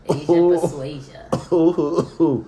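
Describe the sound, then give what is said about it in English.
A string of loud, rasping coughs and throat-clearing bursts in uneven clusters, each with a sharp onset and a hoarse, voiced tail, while people are smoking; the cougher says it is not from COVID. “Yo, I'm not coughing because I got COVID.”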